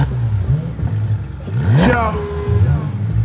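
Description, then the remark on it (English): A GT3 sports car engine rumbles at idle, then revs up sharply in a rising, whining sweep before dropping back to a low throaty idle. Loud, with no one talking. “Hop in the GT3 and stay free.”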